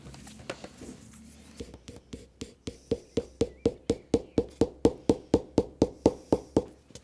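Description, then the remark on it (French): A pencil scratches across paper in quick, steady back-and-forth strokes as someone draws, fairly crisp, speeding into an even rhythm of about four strokes per second after a few scattered marks. “Bah maintenant je te regarde dessiner.”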